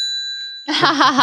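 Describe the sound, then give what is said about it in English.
A single bright bell ding rings out clearly and lingers briefly before a loud voice cuts in over its fading tail. “That's our bell correspondent”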